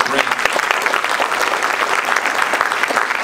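An audience claps steadily, a dense crackle of many hands filling the whole stretch at an even, fairly loud level with no pause or build.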